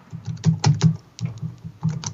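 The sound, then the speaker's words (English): Rapid, irregular clicking of keys on a computer keyboard as someone types in a website address, moderately loud, with short bursts of keystrokes separated by brief pauses and no voices. “I can hear you typing.”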